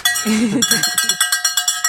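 A bell is rung to mark a tangent in conversation: about ten bright metallic strikes in a steady quick rhythm, each ringing with high overtones. A brief voice is heard just before the ringing begins.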